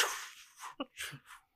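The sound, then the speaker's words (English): A voice imitates a dog splashing in bathwater with a quick series of breathy, hissing bursts and short sputtering sounds, moderately loud, lasting just over a second. “That sort of sound. You know, imagine you put your dog in the bath.”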